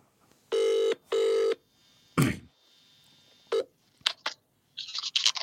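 A phone call to a friend rings out with two steady, buzzing ringback pulses in quick succession, followed by clicks and clattering as the call connects; nobody speaks.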